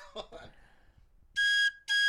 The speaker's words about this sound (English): Can you do any other different tones of the train whistle? I can, but I have heartburn today and a lot of coffee, you so just, I can't hold the thing. You just have to cover up more of the holes.